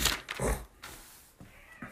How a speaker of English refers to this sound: We got cats in there fighting. So that's good. They're totally fighting.